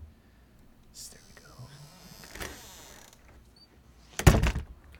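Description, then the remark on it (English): A door is eased shut, with soft rustling and faint movement before a single sharp latch click near the end. “I'm just going to make sure it's closed. I want to hear the click.”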